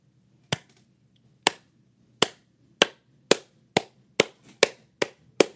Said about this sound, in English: Was that a single clap? Is that all I get? That was my Shia LaBeouf clapping.